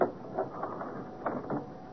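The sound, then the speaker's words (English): A door swings shut with a few mechanical clicks and rattles as the latch catches, a short series of dull knocks spread over two seconds with no voices. “Wait till I close the door.”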